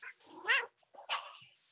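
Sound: cat meowing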